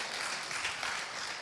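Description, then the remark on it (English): An audience claps steadily throughout, a dense, even wash of many hands with no voices over it. “If we're gonna clap, commit to it.”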